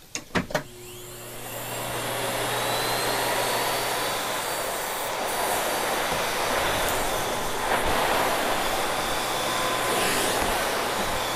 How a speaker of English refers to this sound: One company that I love is a company called Miele out of Germany. And listening to a Miele vacuum fire up is just a beautiful sound.